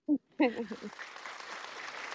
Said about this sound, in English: You hear that clap?